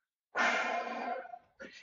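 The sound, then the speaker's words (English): A person imitates the wheeze bulls make as they step back from each other, with one long, raspy, breathy exhale and then a short second puff, fairly loud. “You'll hear these bulls kind of wheeze.”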